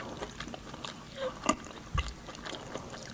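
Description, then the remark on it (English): Wet ASMR chewing with soft lip smacks and squishy mouth sounds, a steady quiet rhythm broken by a couple of sharper clicks, with no talking. “Wait, let Kristen listen to the chewing for a little while.”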